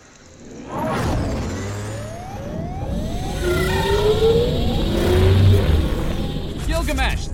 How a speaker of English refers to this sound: Engines are failing.